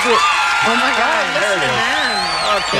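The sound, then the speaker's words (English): About four people clap hard and steadily, a dense, even patter of hand claps that runs the whole time, with voices talking over it. “Yeah, there's only like four people and clapping. And they were clapping at maximum ability.”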